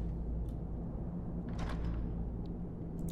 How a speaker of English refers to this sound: This is a very tight room. You have to close the door to get into the back of it.